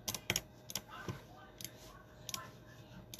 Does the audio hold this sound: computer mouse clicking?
yes